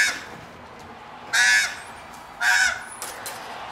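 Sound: birds cawing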